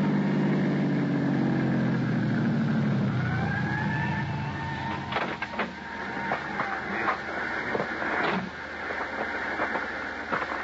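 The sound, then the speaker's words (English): An ambulance pulls away from a curb near a pier in Los Angeles and heads south toward town, with a heavy engine rumble and a rising siren wail. As it recedes, scattered sharp clicks and clatter take over. No one speaks. “Thanks to an ambulance that pulled away from the curb and headed south toward town, I found a parking space.”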